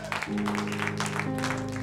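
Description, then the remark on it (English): An audience claps for the Lord Jesus in a steady, dense burst of applause, with sustained organ-like chords ringing underneath throughout. “Clap for the Lord Jesus.”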